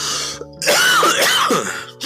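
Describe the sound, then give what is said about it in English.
A loud, raspy cough with a gravelly, throat-clearing quality: a short burst, a brief pause, then a longer rough stretch with no talking. “Or shut that cough up for one.”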